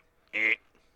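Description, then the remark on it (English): A person imitates a game-show buzzer with one short, loud, nasal buzz lasting about a quarter second, cutting off abruptly against an otherwise quiet background. “I need a buzzer sound from each of you.”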